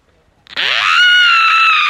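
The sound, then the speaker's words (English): A voice lets out a single loud, sustained scream that rises sharply in pitch and holds for over a second, imitating a frightened shriek, alone after a moment of silence. “He screamed and he ran.”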